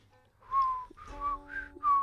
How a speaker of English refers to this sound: My whistling is terrible. I can't remember that one.